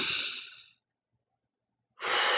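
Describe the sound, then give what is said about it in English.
A long, deep breath drawn in, then a pause of silence before a strong breathy exhale. No talking, just the airy rush of breathing. “the first thing I did was just took a deep breath.”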